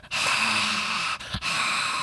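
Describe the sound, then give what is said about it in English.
Loud, airy breathing right up against the microphone, a long rushing breath that briefly breaks and then resumes, with no talking. “I don't know what noise that is. I don't know if it's me or that's you breathing”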